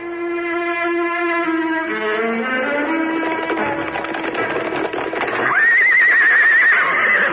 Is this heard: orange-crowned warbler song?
no